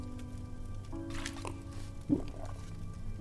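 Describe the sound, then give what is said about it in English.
Someone takes a quick, wet sip of melted snow water, a single close slurp against a low, steady background rumble with no talking. “At least the snow water's good.”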